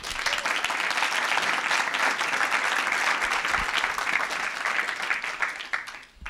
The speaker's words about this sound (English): So please, big round of applause for Eva.